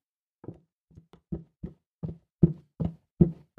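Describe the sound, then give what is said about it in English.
A steady series of footsteps, roughly nine heavy thudding steps at an even walking pace, growing louder as they seem to approach. There is no talking. “will play the appropriate footsteps audio.”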